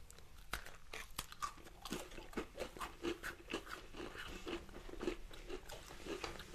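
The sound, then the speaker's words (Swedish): Crisp crunching as someone bites into and chews a flower-shaped, slightly thick IKEA gingerbread biscuit, with a steady run of sharp, crackly bites about every half second and no talking. “Det kan knastra lite nu.”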